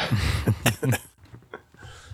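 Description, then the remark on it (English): Someone coughs in a quick run of four or so harsh, raspy bursts, then lets out a couple of fainter, softer coughs before trailing off. “Are you coughing because all the weed and the kind bud and the herbs?”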